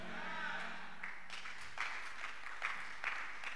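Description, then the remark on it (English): A crowd claps steadily, the applause fairly soft and continuous with a few sharper bursts standing out, and no one speaking over it. “Those who are clapping, God is already talking to them.”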